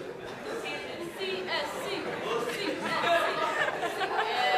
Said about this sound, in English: CSC has the best cheer.